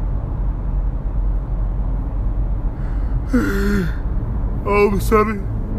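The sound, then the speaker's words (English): A person yawns, a drawn-out voiced exhale with wavering pitch, followed by a shorter strained vocal burst, over a steady low rumble in the background. “I'll yawn on you motherfuckers.”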